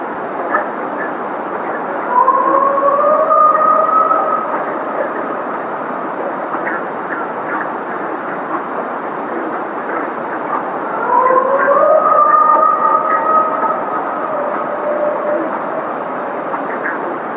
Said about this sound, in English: he came back with a really great explanation for it all. And he thinks it's a Sasquatch calling out to another Sasquatch.